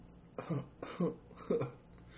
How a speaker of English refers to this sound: I still have a cough. Let me hear it.